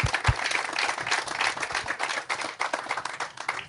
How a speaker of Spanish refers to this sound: But can we give the Lord a praise offering this morning? Podemos alabar a Dios ahorita con un aplauso.